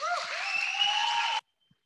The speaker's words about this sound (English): So we get a round of applause